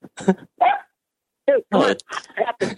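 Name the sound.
dog barking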